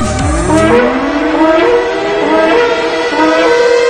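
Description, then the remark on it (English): A loud alarm siren sound effect opening the Voice of Revival radio program winds up, its pitch sweeping steadily upward from a low growl before settling into a sustained, wavering wail. No voices are heard. “We are Watchmen sounding the alarm.”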